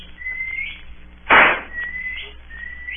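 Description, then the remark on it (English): A whistled signal: three short, high rising whistles spaced across the moment, fairly thin and steady, with a brief harsh noisy burst between the first and second. No one speaks. “That's the last signal.”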